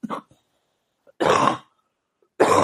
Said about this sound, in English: That cough sounds really healthy. That's a good cough.